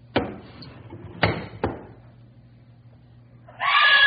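Three sharp bangs ring out close by, then after a quiet pause a woman's shrill, frightened scream bursts in loudly and carries on to the end.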